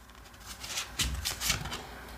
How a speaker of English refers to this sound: Oh my god, none of these feel right. Hold on. Shuffle again. Do you want to use my deck? No. Okay. I really like this, the Guild Tarot for this kind of stuff.